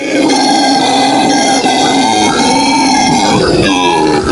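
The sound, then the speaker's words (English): A person's voice imitates a monkey call on The Neil Prendeville Show on Cork's Red FM: one loud, sustained, gravelly grunting cry lasting about four seconds, rough and throaty, wavering in pitch and breaking up near the end. “And if you thought, right, if you thought that monkeys went, you'd be wrong. They go.”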